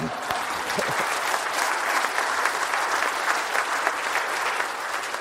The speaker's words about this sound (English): That was kind of a weak clap for, yeah.